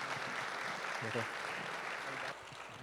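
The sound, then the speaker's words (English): A crowd at a Father's Day church service claps steadily for the men who shared their stories, a dense wash of hand claps that holds level before easing slightly near the end, with a brief voice or cheer rising through it. “Let's give one more round of applause for all of these guys that shared their hearts with us today.”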